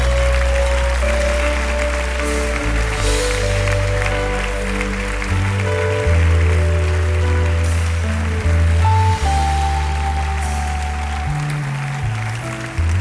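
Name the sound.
audience clapping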